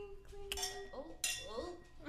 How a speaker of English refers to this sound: And cheers to Brittany, living her best life. Clink, clink.